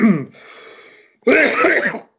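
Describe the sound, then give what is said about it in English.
A brief vocal sound and a soft breathy intake lead into one loud sneeze that bursts out sharply and trails off after about a second. “Bless you. Excuse me.”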